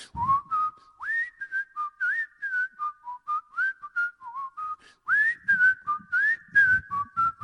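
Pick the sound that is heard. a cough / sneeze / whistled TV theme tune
whistled TV theme tune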